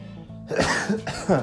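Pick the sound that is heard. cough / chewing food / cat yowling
cough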